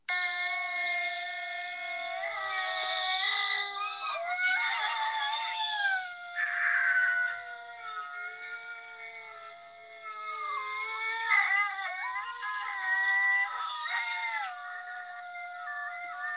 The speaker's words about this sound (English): And so let me just play this one more time because the wolf call is truly one of my favorites. So here is the gray wolf one last time.